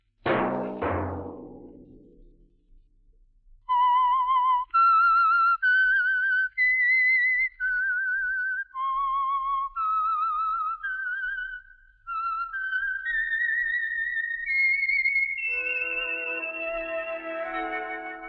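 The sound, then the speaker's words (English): The whistled theme tune of the Signal Oil radio program The Whistler: a clear whistled melody of held notes with slight vibrato, rising and falling in a slow theme, following a brief musical sting and ending as a sustained instrumental chord swells in. “That whistle be your signal for the Signal Oil program, The Whistler, each Sunday night at this same time.”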